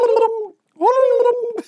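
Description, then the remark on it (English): A person mimics a turkey gobble with their voice, two warbling, gargly bursts separated by a short pause, fairly loud. “Turkeys. Chasing the kids down the street from the school. You just hear it in the chimney.”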